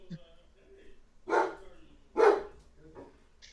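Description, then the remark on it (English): A dog barks twice, loud and close, the sharp barks about a second apart, followed by a softer, shorter yelp as the sound trails off. “It does sound like how Rooney barks at his teammates.”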